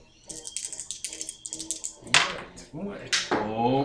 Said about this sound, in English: So what does the shotgun do? 2d6 damage. Roll 2d6.